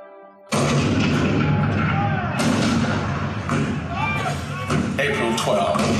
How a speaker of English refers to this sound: April 12, 1861, Fort Sumter. The cannon spoke for war, bitter, violent, and devastating.